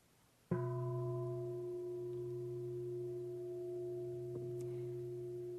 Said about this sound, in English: And so he struck the bell. It's like, that's the event.